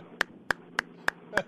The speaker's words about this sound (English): Why am I the only one clapping? I don't understand.